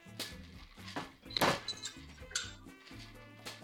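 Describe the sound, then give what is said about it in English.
A stuck cocktail shaker, holding a frothy cocktail, is banged a few times on the side with more room to break the tins apart: irregular sharp metallic knocks, the loudest midway, over a low steady background hum. “So you're going to bang on the side that has the more room, harder.”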